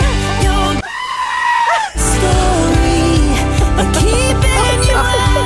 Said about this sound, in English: Okay, well, now we're going to have to find some goat sound effects. She says that like I don't have them already.